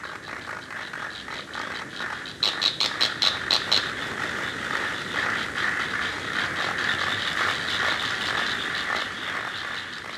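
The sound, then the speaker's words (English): A steady buzzing chorus of cricket-like wing stridulation chirping, with a burst of sharp, evenly spaced pulses near the start, then a dense, rasping trill that continues throughout at moderate loudness, with no voices. “An extinct cricket-like species from 270 million years ago, called Permostridulus, is the first known singer on land.”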